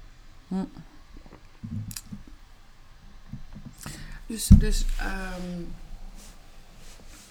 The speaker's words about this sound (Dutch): Ik neem even een slokje tussendoor.